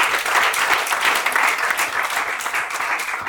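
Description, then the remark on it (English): A church audience claps to God together in a dense, steady burst of applause lasting a few seconds, many hands overlapping into a bright, continuous crackle with no voices standing out. “Let's clap to God.”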